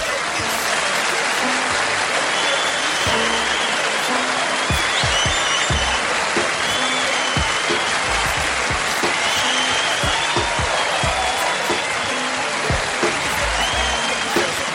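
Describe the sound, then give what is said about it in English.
Steady, loud applause from an audience, a dense wash of clapping that holds evenly for about fifteen seconds, with scattered cheers and whistles rising above it. “Now put your hands together for the Shiznit Show.”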